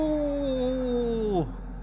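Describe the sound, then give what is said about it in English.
A man at a club imitates a wolf howl: one sustained, slightly croaky tone that slowly falls and then drops off sharply at the end, fairly loud, with no other talk. “My howl is instinctive and croaky, but gets a laugh.”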